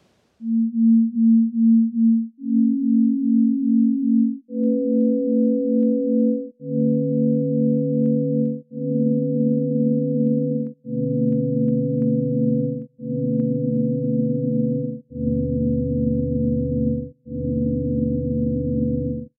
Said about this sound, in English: As we layer the waterfall's frequencies back one by one, they start to interfere with each other.